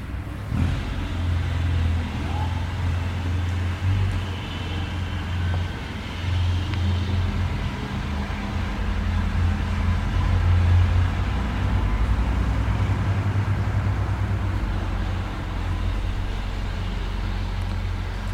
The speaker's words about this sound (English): And I'll try and adjust my volume in accordance with the tractors. We'll see.